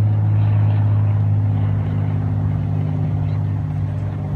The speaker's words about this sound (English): But that plane is dropping shit on us, and I'm more updating people.